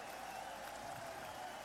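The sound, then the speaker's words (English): A baseball stadium crowd of better than 17,000, on its feet as Jason Donald comes up to bat for the 27th out, cheers and applauds in a steady, dense roar that holds at an even loudness throughout, with no voices speaking over it. “It's Jason Donald, and a crowd of better than 17,000 to its feet.”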